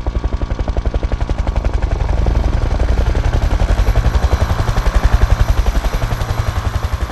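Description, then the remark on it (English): Loud helicopter rotors thudding in a fast, steady rhythm, with a dense engine whine and rumble filling the air as a fleet of helicopters hovers and lands on and around a dam. “A fleet of Jodande helicopters is landing on and around the dam, blockading all the roads to the area.”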